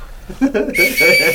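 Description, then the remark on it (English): A brief bit of talking gives way to a loud, shrill blast from a small whistle on a paracord survival bracelet, held steady for about half a second. “And it comes with a paracord bracelet with a fire starter, compass, rape whistle. Blow the whistle.”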